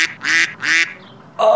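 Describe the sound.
A person mimics a duck, giving two nasal, buzzy quacks in quick succession, then a third rougher honk after a short pause, loud.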